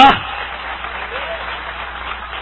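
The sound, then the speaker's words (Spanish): An audience breaks into steady, dense applause, a continuous wash of many hands clapping at even loudness for a couple of seconds, with a brief loud burst at the very start. “Si es para Dios, dale fuerte ese aplauso.”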